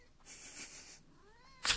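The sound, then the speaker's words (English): A cat named Kitten meows softly with a drawn-out, wavering cry, followed by a sharper, louder chirp-like meow at the end; no talking. “I think Kitten's been really wanting to have some love sent his way, so if you want to send a DM or an email in Kitten's name, I will be happy to pass that message on.”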